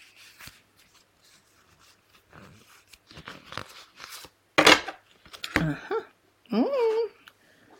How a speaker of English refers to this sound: With that intention, we're going to shuffle the cards and choose one. Let's see what we get. Here we go.